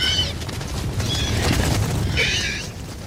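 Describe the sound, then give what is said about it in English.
Three short, raspy, high-pitched shrieks, each a bright bird-like squawk, repeat over a steady low rumble: a synthesized gallimimus call for a movie, made from a horse's call that is chopped up, raised in pitch and panned left and right. “Now, that doesn't quite sound like a gallimimus yet, but if we chop it up, then bring up the pitch, then pan these sounds to the left and right, we can get pretty close to what we hear in the movie.”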